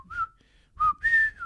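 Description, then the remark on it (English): A person whistles the Colonel Bogey march, the tune known from the film Bridge on the River Kwai, clear, with a few bright sustained notes broken by brief pauses, no talking over it. “There's a thing, they do that thing, it's called Colonel Bogey, and they go, I can't remember, it's not...”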